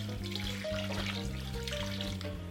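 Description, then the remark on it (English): Two cups of water pour steadily into a soup pot for a couple of seconds, a continuous splashing and gurgling with soft tonal music playing underneath. “And then 2 cups of water.”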